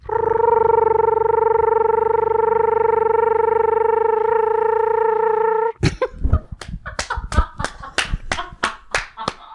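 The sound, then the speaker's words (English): A person imitates an American toad's trill, holding one steady, buzzing, mid-pitched tone for about six seconds. It breaks off into a run of sharp, choppy bursts. “I do really love the American toad call. It's just that long trill.”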